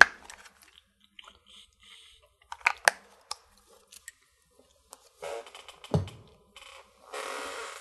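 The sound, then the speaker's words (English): Someone takes a quick drink of water: faint clicks and taps from handling a cup, a soft slurping sip, a low gulp, then a brief breathy exhale. No talking. “Before I continue, I'm just having a brief drink of water.”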